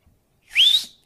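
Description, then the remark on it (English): A single loud, sharp whistle rises quickly in pitch and holds briefly before fading, a person whistling with their mouth instead of using a whistle, heard alone for about half a second. “You gotta blow your whistle. And I don't have a whistle.”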